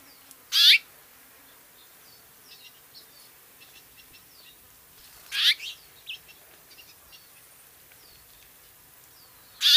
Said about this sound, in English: Here are a few more calls of the house finch.